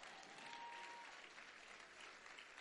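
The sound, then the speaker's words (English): An audience at Davis Christian Center claps for the fathers on Father's Day in a soft, steady patter, many hands blending into a dense wash of sound that holds evenly throughout without anyone speaking. “See the week clap they are giving us.”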